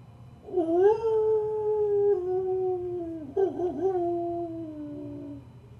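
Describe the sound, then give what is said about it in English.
A long, wavering werewolf howl rises and slowly falls, breaks briefly, then resumes in a second drawn-out howl, at night with clouds covering the moon. It is loud over a low background rumble, with no talking. “This is not a mere wolf we are tracking, but a lycanthrope.”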